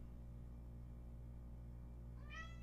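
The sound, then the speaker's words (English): A cat lets out a single short meow near the end over a steady low background hum with no talking. “Hi, kitty cat. What do you want?”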